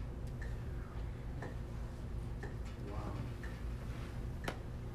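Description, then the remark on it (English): A clock ticks steadily, one sharp tick roughly every second, set against a low background hum, with a single brief word spoken partway through. “And as you can hear, the clock's ticking. Hear the clock ticking? Every click is a second.”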